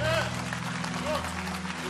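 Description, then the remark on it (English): An audience at a service claps steadily, giving the Lord a hand clap of praise across all of the campuses: a dense, continuous patter of many hands at moderate loudness, with faint voices and a low hum underneath. “You stop clapping. Come on, keep clapping at all of our campuses.”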